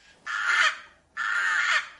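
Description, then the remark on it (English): Two harsh, raspy caws from rooks in a research aviary, each lasting about half a second, loud with a short pause between them and no other sounds. “Now, rooks are a member of the corvid family, the crow family, and the crow family has been known to be really intelligent and probably the most intelligent of the birds.”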